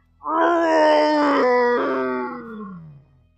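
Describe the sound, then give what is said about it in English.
A person's voice imitates the roar of a berserk, enraged flesh golem monster: a single drawn-out, growling howl lasting about three seconds, loud, sliding gradually downward in pitch before fading out. “It's now the flesh golem's turn. It roars.”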